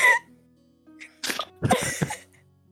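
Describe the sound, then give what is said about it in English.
A voice imitates a sneeze: a sharp breathy burst, then a pause and a longer, louder wet 'achoo'-like explosion broken into quick puffs. “sneezes into Krios's face again”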